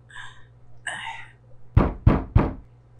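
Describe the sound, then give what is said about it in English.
Three quick, evenly spaced knocks on a wall, not the front door, loud and solid with a low thudding body, preceded by a couple of faint tonal murmurs. “Someone's knocking on the wall.”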